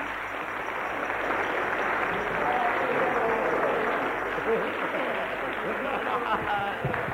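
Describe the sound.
A crowd claps steadily for several seconds for a woman, a dense, continuous wash of applause with murmuring voices mixed in underneath.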